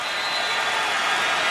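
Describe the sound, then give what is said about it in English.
The Oracle Arena crowd cheers in one steady, unbroken roar, loud and dense throughout, with no voices standing out and no talk over it. The cheering responds to a Kevon Looney jam that gave the Warriors their biggest lead of the night against the Wizards. “And listen to the Oracle crowd respond.”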